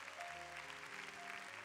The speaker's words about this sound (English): Clap your hands and praise God for it.